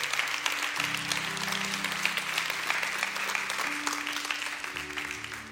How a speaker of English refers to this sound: Come on, somebody clap your hands and thank God.